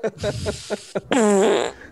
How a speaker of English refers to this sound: Vague sounds of me farting.